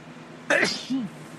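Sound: sneeze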